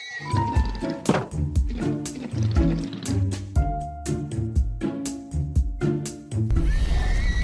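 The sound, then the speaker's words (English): A video game horse neighs amid a busy string of thumps and clicks, with a higher whinny rising near the end; the sounds are fairly loud, and no one speaks. “take a 12 block per second horse, introduce him to the mega horse and make them make a smaller horse”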